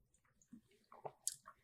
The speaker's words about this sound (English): All right, I'm going to take a sip.